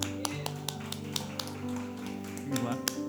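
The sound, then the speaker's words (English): A crowd claps together in a steady, even rhythm, about four sharp claps per second, over sustained low musical tones that swell slightly toward the end. “And we can clap.”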